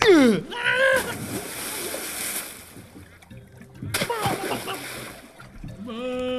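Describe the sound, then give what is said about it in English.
A heavy splash as a person wearing a weighted backpack is shoved into water, followed by churning and sloshing as he struggles, then a second burst of splashing; strained vocal sounds rise at the start and end. “And he gets shoved into the water.”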